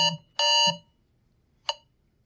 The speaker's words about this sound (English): I don't know why I have an 8:30 alarm. Technology, see, it's not my fault. It's against me, man.